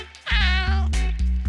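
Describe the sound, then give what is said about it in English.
A Bengal cat lets out a loud, drawn-out meow, then a few shorter, clipped vocal bursts, with no talking around it. “they rent a $1 million condo on Wall Street in Manhattan, where they lived with their Bengal cat”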